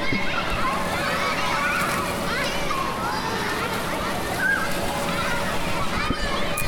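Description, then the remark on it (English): Children shout and shriek as they play in fairly big plastic pools set up outside a mall, with a water slide, continuous splashing and sloshing water and a dense wash of overlapping young voices at a steady, lively level. “Can you hear the children screaming and playing?”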